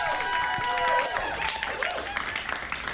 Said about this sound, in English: Thank you, thank you. It's by accident, so you don't have to applause that hard.